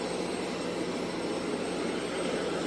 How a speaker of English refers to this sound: But they're literally going to Marine One, like the helicopter.